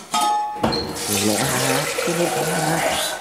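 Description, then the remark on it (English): Water gushes steadily from a tap into a kettle, a bright hissing rush that runs for about three seconds after a short tonal sound at the start, with a voice sounding over the flow. “Now, where's that kettle? There it is.”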